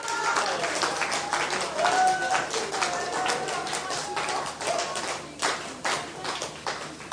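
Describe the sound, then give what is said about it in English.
A church audience claps in praise continuously in a dense, uneven patter, with indistinct voices, a brief high-pitched whoop or whistle mixed in, and the clapping growing sparser toward the end. “Yeah, you can clap, you can praise.”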